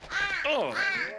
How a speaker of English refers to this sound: Now, for my next trick, I will make this crow disappear.